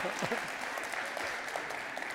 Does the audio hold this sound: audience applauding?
yes